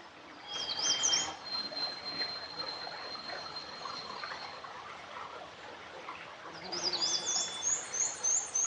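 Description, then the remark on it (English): Warblers sing in bursts of high, thin, rapid trills, one near the start and a longer run of repeated phrases near the end, over a steady hush of boreal forest ambience in the North Woods of Minnesota. “warblers are very prevalent songbirds in the North Woods.”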